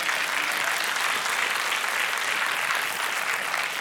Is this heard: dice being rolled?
no